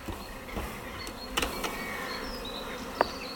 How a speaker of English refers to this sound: And I can see that the hive is literally a hive of activity. Plenty of bees in there. Very busy indeed. I'm giving it a bit of a smoke to let them know that I'm coming.